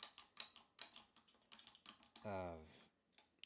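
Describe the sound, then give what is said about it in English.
A rapid series of sharp plastic clicks from a cheap guitar string winder being cranked, bunched in short bursts, followed by a brief stretch of a man talking. “what do you call it? String winder.”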